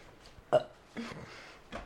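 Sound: burp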